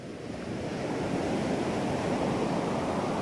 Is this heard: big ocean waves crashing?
yes